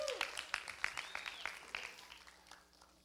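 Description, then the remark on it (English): A crowd claps and cheers for the children as they are dismissed to their workshop, in a burst of scattered, uneven claps, with a thin whistle sliding through the middle, the noise tapering off over about three seconds. “We like to make noise for our children. Let's cheer.”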